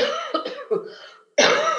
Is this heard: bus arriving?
no